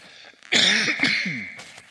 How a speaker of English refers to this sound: But here's the thing, and I'm going to cough.